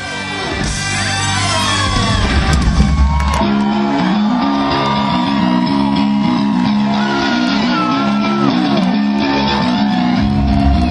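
A large concert crowd in Nashville roars steadily for about eleven seconds, loud throughout, with shouts, whoops and cheers rising out of a dense wall of voices.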